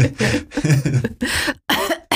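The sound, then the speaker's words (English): A loud fit of coughing: several harsh, raspy coughs in quick succession with brief gaps between them, and no talking. “Sorry, I had a cough.”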